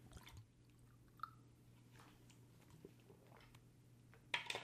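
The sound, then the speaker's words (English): Someone drinks water: soft sips, wet mouth clicks and a swallow over a steady low hum, ending with a brief louder clatter. “You just heard me drink water.”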